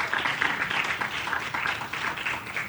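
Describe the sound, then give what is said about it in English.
A live show audience breaks into a steady round of applause for themselves for coming, a dense, even crackle of many hands clapping at once that holds at a fairly constant level throughout, with no voices standing out. “So give yourselves a round of applause for coming today.”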